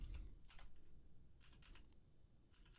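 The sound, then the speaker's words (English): Quick bursts of computer keyboard typing, several short clusters of clicky keystrokes separated by brief pauses over a low background rumble. No one speaks. “Am I going in Japanese? Had to have a Japanese keyboard.”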